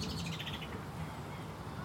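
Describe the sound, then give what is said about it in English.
Alarm calls of a mistle thrush on yew berries ring out in the background, a rapid series of sharp, high chirps in the first half, fading away over steady low outdoor rumble with no one speaking. “Alarm calls coming off in the background.”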